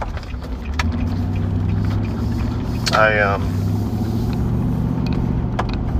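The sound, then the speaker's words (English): Steady, droning low rumble of a car's interior while driving, continuous throughout, with a brief wavering voice-like tone rising near the middle and a few faint clicks. “I'm gonna turn this car around.”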